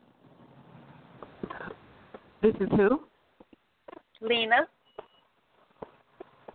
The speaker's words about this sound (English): Okay, can you spell it for me? Because the phone's breaking up a little.